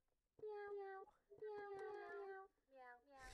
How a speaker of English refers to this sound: Do y'all want to hear my cat piano? It's a piano, it's a cat. I was playing it earlier. No, I'm playing it. Look.